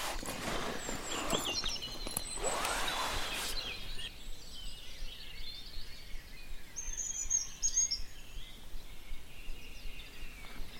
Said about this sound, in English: Hear that dunnock? It's really almost the most nondescript. It just goes du du du du du du du du du du. Dunnock or hedge sparrow.